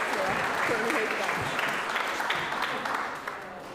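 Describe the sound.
An audience claps steadily, a dense wash of many hands that stays loud throughout and eases off slightly near the end, with a few faint voices mixed in.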